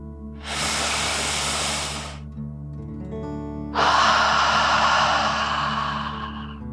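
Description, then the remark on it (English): A long, airy breath drawn in through the nose to fill the lungs, a brief pause, then a stronger, forceful exhale pushed out through the mouth, a deep relaxing 'dragon breath', clear over a soft steady background hum. “Breathe in through your nose, filling up your lungs, and then out through your mouth, imagining you are breathing fire, like a dragon.”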